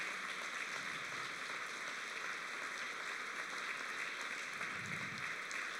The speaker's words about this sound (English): And today, I want to thank you all across this church for the warrior women of God that are raising the next generation of faith that will go out and change the world. Can you give them a hand clap today? Give yourself a hand clap.